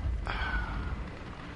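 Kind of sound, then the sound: sound effect, video game explosions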